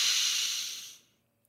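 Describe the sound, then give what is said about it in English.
A single long, airy deep breath in during a breathing exercise, a soft hissing rush that starts strong and tapers away over about a second, followed by quiet. No one speaks. “One more deep breath in.”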